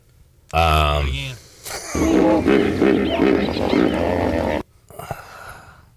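A hippopotamus vocalizing: a loud, harmonic honking call, then a long run of deep, pulsing, wheezy grunts that stop abruptly, followed by a few fainter snorts.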